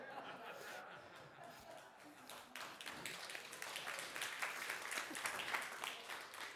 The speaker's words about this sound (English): Didn't expect that to get an applause, but...